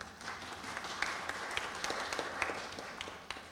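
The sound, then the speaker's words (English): A group of people applauding, a steady burst of many overlapping hand claps with no voices, sustained at an even level for a few seconds. “I think you deserve a wee round of applause.”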